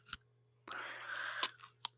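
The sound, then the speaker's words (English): Crisp biting and crunching into jalapeno peppers, a sharp snap followed by a sustained juicy crunch of chewing, then a couple more quick crisp bites, with no talking. “Yeah, 3-2-1 crunch.”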